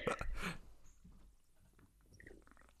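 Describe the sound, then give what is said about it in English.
A quick first sip of blackberry-flavored seltzer from a can, a short fizzy slurp at the start followed by faint swallowing and soft mouth sounds, with no talking. “I'm going to take my first sip.”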